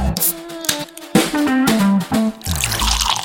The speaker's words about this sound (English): Okay, so 2 drams poured out. We have a glass with the Bushmills port cask finish and a glass with the Bushmills char bourbon cask finish.